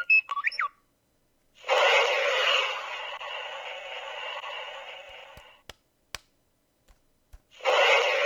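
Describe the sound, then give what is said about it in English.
An R2-D2 droid toy, activated with a Force Link band, gives electronic beeps that warble in a quick, pitch-sliding burst, followed by long stretches of loud electronic hissing (rocket sounds played over its beeps) and a few sharp clicks, with no one talking. “And, of course, he beeps.”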